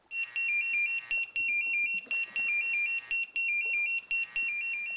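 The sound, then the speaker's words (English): An emergency pager alert paging a lifeboat crew member on land to an emergency: loud, shrill electronic tones stepping rapidly between high pitches, repeating in bursts about a second long with brief breaks, and no voices. “Meanwhile, on land, crew member Paul was being paged to the emergency.”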